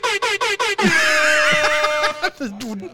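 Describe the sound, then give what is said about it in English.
A loud air horn gives four quick, evenly spaced blasts, then one long blare whose pitch wobbles and bends oddly before cutting off, followed by a brief low vocal sound. “That's the weirdest air horn.”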